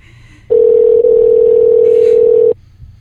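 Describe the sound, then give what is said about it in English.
A single ringback tone from an outgoing phone call: one steady electronic buzz lasting about two seconds, loud, with only faint background noise before and after. “I wish my phone rang like ding, ding, ding, ding.”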